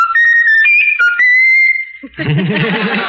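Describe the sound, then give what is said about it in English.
A pet bird, asked to whistle its favorite tune, whistles a short, clear tune of several sliding, pitch-stepping notes, loud, followed by a burst of rougher, warbling vocal sound. “Is that the bird doing that? Raffles, whistle your favorite tune.”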